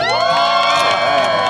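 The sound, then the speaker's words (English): A crowd of a few hundred people on a plaza in warm weather cheers and shouts continuously, a dense wall of overlapping voices with high-pitched whoops and yells rising through it, loud and steady for the whole moment. “And just a few hundred of our closest friends out there on the plaza soaking up the warm weather.”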